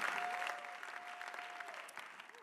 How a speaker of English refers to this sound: Give a mighty clap offering unto Jesus for this great intervention.